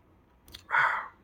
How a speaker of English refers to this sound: Now hold on for a second while I take a sip of this cup.